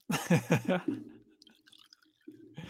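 Glenfiddich single malt Scotch whisky is poured into a glass: a few quick, rhythmic glugs, then a softer, thin trickle that tapers off, with a faint rustle at the end.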